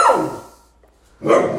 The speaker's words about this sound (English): Don't tell me my dog's not a killer, though, with that bark. Like, what a killer.